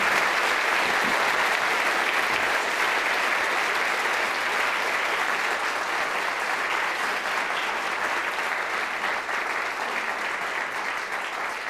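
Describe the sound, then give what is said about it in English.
An audience at a University of Sydney evening event gives sustained applause for the speakers and guests, a dense, steady wash of many hands clapping at an even loudness for about twelve seconds, with no voices over it. “So please give a round of applause if you would.”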